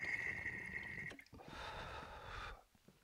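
A brief gurgle of water bubbling through a smoking rig with a lowered water level during an inhaled pull, lasting about a second after a thin, steady whistling tone, with no talking.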